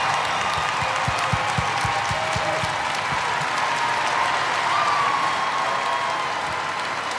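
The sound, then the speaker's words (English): A large crowd claps loudly and steadily for Bill Gates, with whoops and cheers rising over the dense wash of applause throughout. “Everybody stand up and give Bill Gates a humongous round of applause.”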